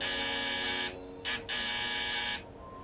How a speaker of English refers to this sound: I think we can just buzz her in, right? Can we buzz it in? Let's buzz it.